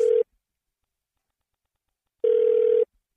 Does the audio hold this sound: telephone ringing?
yes